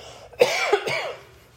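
A short pair of moderately loud coughs in the middle of a Sunday school lesson, two harsh bursts in quick succession with a raspy tail, and no talking around them.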